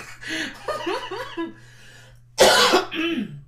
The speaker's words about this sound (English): Oh, this cough is trying to take me out.